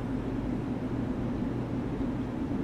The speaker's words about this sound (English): A train.